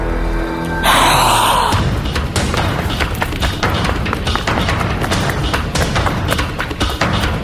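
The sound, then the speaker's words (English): A burst of noise gives way to quick, steady running footsteps of a person running as fast as they can, thudding for several seconds, with heavy, gasping breaths mixed in and no talking. “I will then run as fast as I can.”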